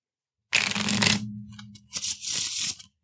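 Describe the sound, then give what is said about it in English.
Playing cards being handled: a quick riffling burst, a few light clicks, then another papery flutter of the deck. No one speaks. “So I'm on my last card of the deck since we shuffled, and I'm going to use it.”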